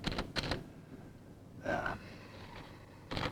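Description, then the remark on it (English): A page is pulled out of a typewriter: short, quiet scratchy rasps with a brief sliding, ratcheting whir in the middle, with no voices. “And Herbert, looking very pleased with himself, takes the page out of the typewriter.”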